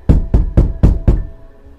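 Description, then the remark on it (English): Five firm knocks on a wooden front door in quick, even succession, loud, with a brief resonant ring after each rap and no voices. “Maybe he was just so excited for people to come that he just heard a knock at the door.”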